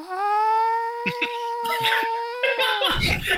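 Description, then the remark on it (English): A voice imitates the cartoon character Doug's soft, gentle scream on waking from daydreams: one sustained, steady, high-pitched vocal tone held for about three seconds, with brief breathy consonant-like bursts over it, ending in a noisy exhale. “it was like a really soft scream, gentle scream.”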